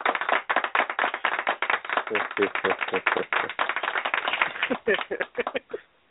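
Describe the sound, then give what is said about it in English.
Hands clap rapidly and steadily, a dense run of sharp slaps lasting about six seconds before stopping abruptly, as a show host claps for a male caller. The sound is thin and narrow, like a phone line. “I have to give him some clap.”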